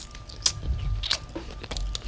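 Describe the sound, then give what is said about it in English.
Someone chewing a mouthful of undercooked beans, with a few sharp crunchy bites at irregular moments over soft, wet mashing. Moderately loud, with no talking. “I think these beans are a little undercooked.”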